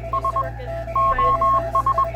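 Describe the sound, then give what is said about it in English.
Morse code radio beeps in a single steady mid-pitched tone: three short, three long, then three short, spelling SOS, over a low constant hum with no voices. “But sending voices across the ocean simply wasn't possible yet, so users sent messages using Morse code.”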